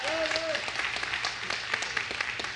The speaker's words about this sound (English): He's sitting here today, so you guys feel free to give him a round of applause. There you go.